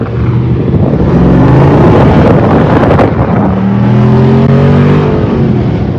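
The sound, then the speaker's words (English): A Jeep's stock exhaust roars loudly as the engine revs hard under acceleration, the harmonic pitch climbing and shifting over several seconds, with rushing wind noise throughout and no talking. “And that sound, that exhaust.”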